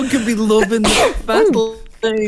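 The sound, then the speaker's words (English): A single sharp sneeze bursts out loudly in the middle of conversation, with people talking just before and right after it. “Firstly, bless you.”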